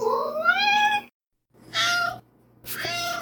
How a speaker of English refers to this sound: If you're not familiar with the sounds cats make, this is a recording of my cat Poe.